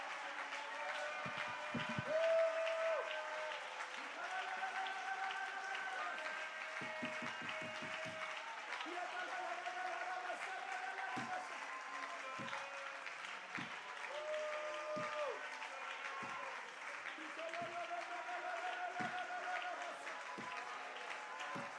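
The Cornerstone audience claps steadily for about twenty seconds, a dense, loud wash of hand claps with sustained musical tones and occasional voices running underneath.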